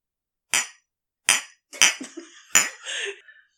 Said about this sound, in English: Can we do the sound effects of a clink?